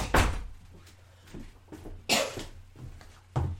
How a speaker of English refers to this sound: Oh, for the love of God, it's the mail lady. Closing this door.